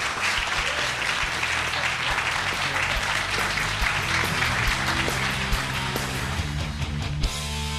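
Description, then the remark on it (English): An audience applauds steadily for Dr. Stephen Phelan, a dense, even wash of many hands clapping at a constant loudness for several seconds before it begins to thin out near the end. “Big round of applause for Dr. Stephen Phelan.”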